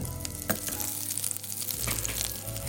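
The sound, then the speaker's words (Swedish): Small chicken pieces sizzle steadily as they brown in butter in a frying pan, a dense hiss sprinkled with sharp crackles and pops, over a low steady hum, with no one speaking. “Så att, okej, ska vi börja bryna dem en stund? Nu ska vi börja bryna dem, ja.”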